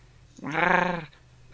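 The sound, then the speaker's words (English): One drawn-out, whiny call from a frilled animal, like an annoyed cat's meow, lasting under a second with a steady, buzzy pitch. It rises out of quiet background and then fades out, with no one talking. “They sound like a slightly annoyed cat, apparently.”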